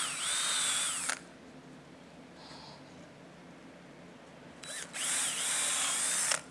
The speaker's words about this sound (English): And so when I put together this tabletop, what I'll do is I come in here and I drill my holes.